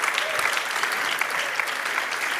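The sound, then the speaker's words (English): A church crowd claps steadily for the pastor and his wife for their hard work, the dense patter of many hands forming a continuous, even wash of applause with no voices rising above it. “Can we just give them a round of applause for all their hard work?”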